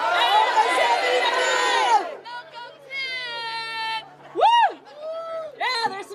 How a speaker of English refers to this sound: So, on the count of three, I want to hear you yell out your union. One, two, three.